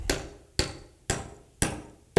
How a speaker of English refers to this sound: this is a nice hammer. And you got to pack the wood around the nail to hold it in place.